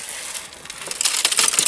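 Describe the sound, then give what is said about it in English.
Continuous crunching and clinking of broken glass and splintered wood fragments as two people on their knees shift and sort them by hand, with sharp bright tinkles growing busier toward the end; no voices. “Why are you both on your knees, sorting through splintered wood and smashed glass?”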